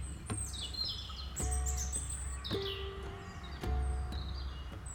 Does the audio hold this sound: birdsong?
yes